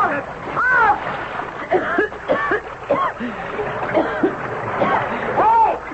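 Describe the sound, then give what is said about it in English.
Water splashes and churns continuously as a person dropped over the side of a boat into the Nile cries out in short, shouting bursts over the turbulent sloshing. “Hey, I'm in the river.”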